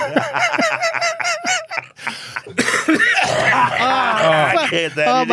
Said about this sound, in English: Poor people's got to listen to you coughing up a lung.